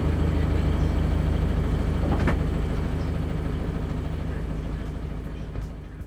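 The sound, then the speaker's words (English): A sailboat's engine drones steadily as it motors out of the harbor, a continuous low rumble that holds for several seconds and fades slightly at the end. “We had to motor out of the harbor before we could reach the winds on the sound.”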